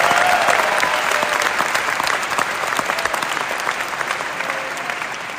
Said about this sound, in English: Can we give him one more round of applause, please? Thanks, everybody.